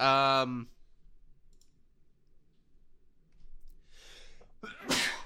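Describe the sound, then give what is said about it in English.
A loud sneeze bursts out near the end after a quick sharp intake of breath, preceded by a brief voiced sound at the start and a stretch of near silence. “Bless you. Excuse me.”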